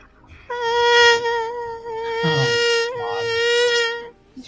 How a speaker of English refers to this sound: It's the mosquito sound, Larissa. This is what the dragon's dealing with.